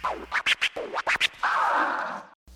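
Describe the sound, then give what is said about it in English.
A Boston Terrier scratches at someone's leg: a quick run of about seven sharp, scratchy strokes, then one longer continuous scrape, fairly loud with no voices. “The monster Boston Terrier is scratching my leg because he needs to go outside.”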